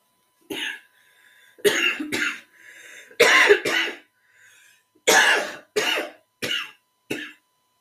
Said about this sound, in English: Pardon me, excuse me, sorry for coughing a little bit too much.